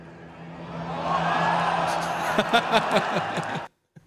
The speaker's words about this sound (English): So you can hear when I play this, the crowd's just kind of like, you know, just kind of murmuring, just talking to each other.